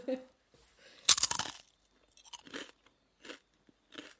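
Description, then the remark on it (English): A loud crunch of biting into thick-cut Copper Kettles salt and vinegar crisps from a bag, followed by a few quieter chewing crunches at irregular intervals, with brief murmurs of voice around them. “It's a bag of copper kettles, chips, salt and vinegar flavoured.”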